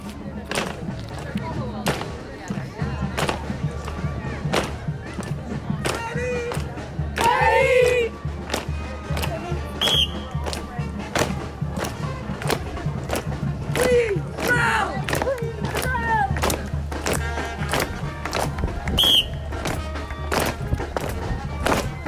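Sharp percussive claps and thuds strike in a steady rhythm, loud, over a lively outdoor crowd with shouts and cheers, as drill teams clap and stomp, dancing through the streets.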